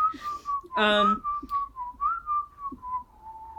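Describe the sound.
A person whistles a simple tune, holding long, wavering notes that rise and fall slightly in pitch, with a brief burst of vocal sound early on.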